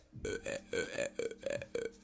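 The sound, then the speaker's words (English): A loud, drawn-out croaking burp that pulses in several rough, rhythmic bursts over about two seconds, deep and gravelly with a strong buzzing tone. “Are you a bullfrog?”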